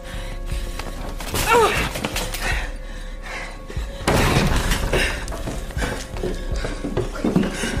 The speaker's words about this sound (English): Stand back from the door. I'll kick it down.